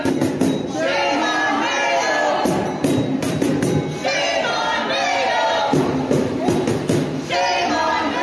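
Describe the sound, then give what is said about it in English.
A crowd of a couple hundred protesters walking down a street, protesting what Mayo is doing about a mandate, cheers and shouts continuously, many voices blending into a loud, steady roar, punctuated every second or two by sharp rhythmic claps or thumps. “And they've got a nice little crowd of a couple hundred people who are walking down the street.”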